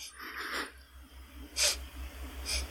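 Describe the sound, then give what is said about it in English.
Three short sniffs spaced about a second apart as someone noses a glass of spirit, with quiet background noise and a low hum between them and no talking. “The sniff test.”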